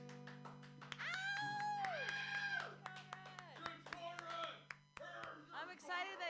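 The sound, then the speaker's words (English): A few people clap in sparse, uneven bursts as a musician comes up on stage to play, while voices talk over them, with a steady low hum underneath. “Clapping is fine.”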